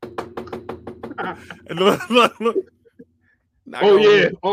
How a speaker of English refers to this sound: Knock on the wood, bro. Knock on the wood.